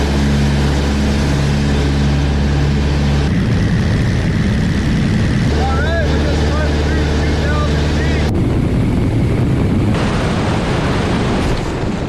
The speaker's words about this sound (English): He's flying the plane, and then the engine stops